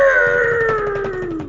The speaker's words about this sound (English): I think he's cheering there.